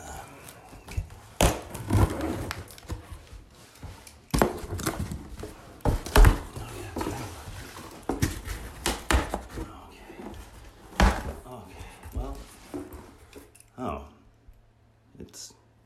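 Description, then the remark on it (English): Someone opens a light mailed package: bursts of tearing, crinkling and scraping, with sharp clicks and rustles that come in uneven spurts before trailing off into quiet. “Well, actually, coincidentally, I just received one today. Yeah, it's kind of strange because I don't remember ordering anything. But let's see what it is.”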